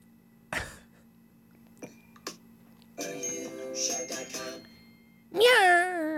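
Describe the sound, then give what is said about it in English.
A voice imitates a cat's meow, ending in a loud, wavering mew. Before it come a few soft clicks and taps, then a brief stretch of humming vocal sound. “So like, now it's a cat saying, "Hey, Meow, you're a rice star.”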